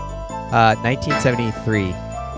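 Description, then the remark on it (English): A short melodic phrase of bright, bell-like tones with a tinkling, percussive attack, several notes rising and falling in pitch over a couple of seconds at a moderate, steady level, from a 1973 music recording. “You sort of hear it in the percussive elements of the melody.”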